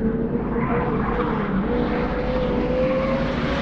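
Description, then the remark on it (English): A car engine starts with the key in the ignition and roars loudly, its pitch climbing steadily as the driver guns it hard, a continuous mechanical drone with no voices. “Jamming the key into the ignition, the car started just as one of the frogmen leapt on the top of the hood. I gunned it.”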